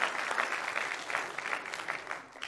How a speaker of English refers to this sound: Clap for him, y'all. He's a man. He's a man. He's a man.